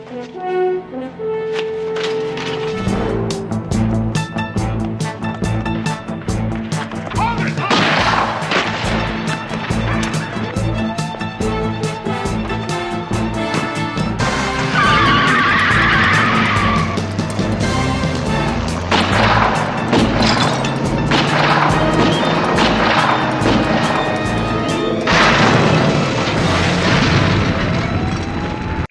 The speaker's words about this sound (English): As the Hoods leave the building, yeah, there's a shootout.